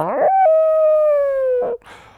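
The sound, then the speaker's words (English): A single loud wolf howl sound effect holds a steady, clear tone for over a second, then gently drops in pitch. Brief bursts of a speaking voice sit just before and after it. “stay tuned for Spirit Wolf.”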